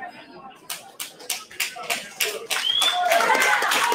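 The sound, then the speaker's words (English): Scattered clapping from the audience at a fight starts as a handful of sharp claps, then swells into steady, dense applause for the fighters with whistle-like tones and crowd noise mixed in. “Everybody clapping, yeah.”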